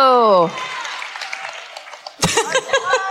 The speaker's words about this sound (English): Now you know to applaud. What if it never happened before and I just really wanted to be applauded while I sit now down? Now applaud! You have to! You have to!